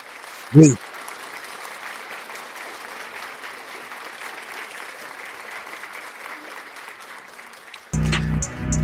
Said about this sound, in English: Here's a big fat round of applause.